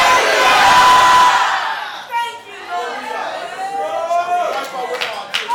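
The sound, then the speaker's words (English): An audience shouts hallelujah together, a loud, dense roar of many voices that swells for about two seconds, then breaks into scattered overlapping cries and calls that continue unevenly to the end. “Shout hallelujah.”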